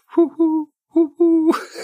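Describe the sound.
Someone imitates a little bird call with their voice: four short, tuneful hooting notes in two quick pairs, fairly loud, followed by a breathy rustle.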